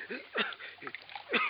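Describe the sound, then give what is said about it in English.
Water being poured for someone, heard as a few quiet, breathy splashing gurgles arriving in short uneven bursts, with no one talking. “Some water.”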